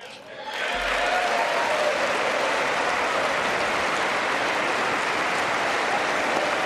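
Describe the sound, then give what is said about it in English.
A large crowd breaks into loud, sustained applause after a brief quiet moment, the dense clapping holding steady and unbroken to the end, with faint voices mixed into the roar, during a speech by President Trump, as Democrats stand and applaud women dressed in white. “And the Democrats, because they don't want to applaud President Trump, a lot of them are turning their backs on President Trump and applauding these women in white.”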